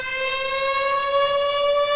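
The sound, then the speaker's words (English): A loud, steady air raid siren wails on a sustained high tone, its rich harmonic drone holding nearly level throughout with no speech over it. “Reader, can you Jesus stop playing Christ, the air raid Reader. Sirens?”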